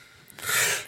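A single loud sneeze erupts suddenly after a moment of near silence, a sharp breathy burst with a hissing spray that fades quickly. No talking is heard.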